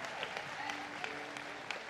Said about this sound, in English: Can we give all the fathers a round of applause? And yeah, come on.